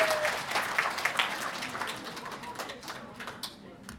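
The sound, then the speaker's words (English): An audience applauds with dense, steady clapping that holds for several seconds and gradually thins out toward the end. “Please give Harper a round of applause.”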